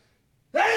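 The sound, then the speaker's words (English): After a moment of near silence, a loud, sudden sneeze bursts out, a single sharp breathy blast that is cut off abruptly, strong enough to knock the sneezer's headphones off. “That one knocked my headphones off.”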